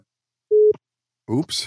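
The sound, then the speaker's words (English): A single short, steady phone call tone sounds at a mid pitch as the speaker's mother chimes in, a clean electronic beep lasting about a quarter second; after a brief silence, a person begins talking. “Speak of the lockdown victim, there's my mom chiming in right now.”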